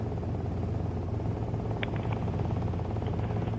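A steady, loud helicopter drone with a low rumbling rotor chop that holds constant throughout, continuous, with no voices.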